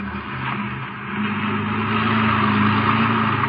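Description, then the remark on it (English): A car engine hums steadily while the vehicle drives along, a continuous low rumble that swells slightly louder partway through, with no voices. “you better drive around the cottonwoods and have a look”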